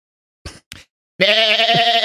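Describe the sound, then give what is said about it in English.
A person imitates a sheep with a loud, wavering bleat, held for nearly a second after two short breathy warm-up sounds. “Yeah, I can do a good sheep.”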